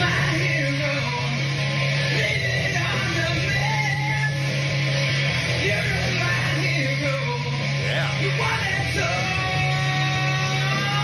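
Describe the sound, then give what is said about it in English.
A singer with the band for Preston and Steve Live Band Karaoke screams and yells hoarsely over a loud, dense rock band, the raw strained vocal sustained at full volume throughout with bending, wailing notes near the end. “It's a hard song to sing. There's a lot of screaming in that.”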